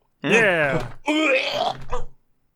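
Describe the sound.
A man makes two loud, strained hacking and groaning noises with a rough, voiced edge, in imitation of a cat coughing up a hairball, then falls silent.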